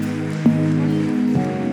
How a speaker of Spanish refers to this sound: Son todos muy bienvenidos y con la iglesia vamos a darle un fuerte aplauso a todas estas personas. ¡Bravo!